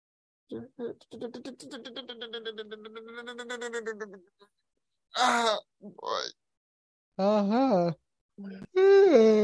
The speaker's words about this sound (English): We're all yawning, we're all stretching. This is a record of us, of our descent into madness.